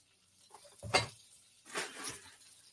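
Faint crackling sizzle of buttered bread frying in a pan in a kitchen, rising in a short burst after a sharp clink of a utensil against the cookware. No one speaks.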